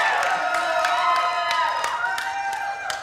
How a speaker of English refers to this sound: I feel like it's like, well, that's my mom cheering or something, you know?